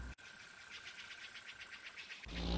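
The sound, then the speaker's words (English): A vehicle engine hums with a steady, rapid pulsing over a hiss, then a deeper rumble swells louder at the end as it approaches. No one speaks. “Suddenly, they heard the sound of an engine.”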